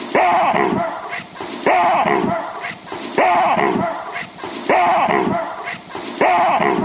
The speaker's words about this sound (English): So if you want, let's play the it's called a real baboon bark, and it's a 5-time loop. All right. Well, here it is.